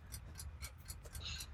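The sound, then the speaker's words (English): A steady, quick clock ticking, about six crisp ticks at an even pace like a countdown timer, over a low background hum with no talking; a 10-second answer countdown in a trivia quiz. “You're on the clock. 10 seconds.”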